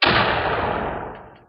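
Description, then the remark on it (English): A single loud explosive blast with a sudden sharp onset, then a broad, roaring rumble that slowly dies away over about a second and a half. No voices. “The blast knocked me out.”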